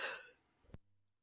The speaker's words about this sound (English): Sorry, I had to sneeze.